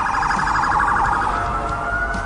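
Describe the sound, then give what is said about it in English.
A police siren wails loudly and continuously, its rapid warbling tone pulsing up and down before settling into a steadier rising pitch, with no talking. “Could we get some sirens at the top here”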